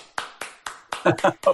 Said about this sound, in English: So that being said, all around, because this is my favorite tech in the industry, I'm going to give you a golf clap, man.